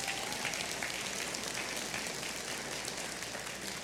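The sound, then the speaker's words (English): A crowd applauds steadily, a dense wash of many hands clapping at once at an even, fairly loud level that tapers only slightly toward the end, with no voices. “Oh, you can clap on that.”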